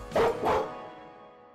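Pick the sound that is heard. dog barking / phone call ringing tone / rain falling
dog barking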